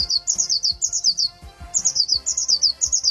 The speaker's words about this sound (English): It's not the old blue jay. It's a blue tit. Okay. Okay. Yeah. It's got the name, yeah. Mm. I usually thought a blue tit had a lot softer sound to it. But clearly not